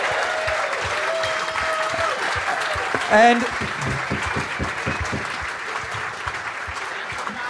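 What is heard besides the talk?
audience applause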